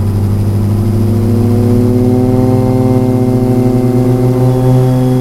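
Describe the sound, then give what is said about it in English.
The engine of a small passenger plane with room for about 10 people drones loudly and steadily, its harmonic hum slowly climbing in pitch as it powers up for takeoff. No one speaks. “I'm settled in now, so it looks like it's time for takeoff.”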